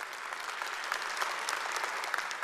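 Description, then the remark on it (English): A church audience applauds steadily for 120 people who graduated from a freedom session, many hands clapping in a dense, even patter at moderate loudness throughout, with no voices rising above it. “Applause, please.”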